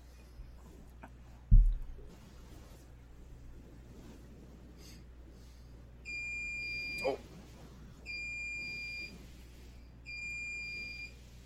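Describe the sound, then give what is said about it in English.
A slow cooker beeps three times to signal it has finished cooking, each tone about a second long with short gaps between them, over a low background hum. A single dull thump comes earlier. “Yeah, I just got a slow cooker going and it just beeped because it's done.”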